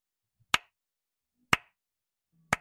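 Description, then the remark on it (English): Three sharp hand claps, evenly spaced about a second apart, form a deliberate slow clap by a mysterious-looking tiefling, heard from a distance while walking out of a stadium. Each is crisp and bright and stands out against near silence. “you hear a slow clap, and as you turn, you see a mysterious looking tiefling.”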